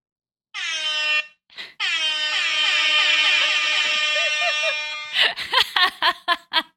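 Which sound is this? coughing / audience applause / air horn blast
air horn blast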